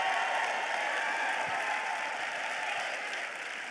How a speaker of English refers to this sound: Give the Lord a clap and a shout of praise.